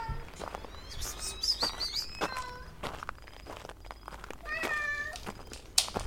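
A cat yowls in an alley in two drawn-out, wavering calls, with soft scuffing footsteps and faint outdoor ambience in between.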